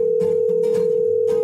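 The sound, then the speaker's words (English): A steady, unbroken telephone dial tone hums at a low-mid pitch throughout, with a few brief, soft bursts of noise flickering over it. “Let's make some calls.”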